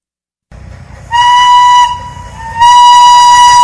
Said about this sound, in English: For the first time in about 50 years, the House of David steam-powered locomotive 902 has been fired up and operated at the Michigan Flywheelers Museum in South Haven.